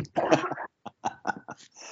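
A close, forceful cough bursts out, followed by a few shorter, softer coughs spaced about a beat apart, with no talking in between.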